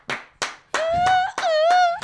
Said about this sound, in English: That deserved applause.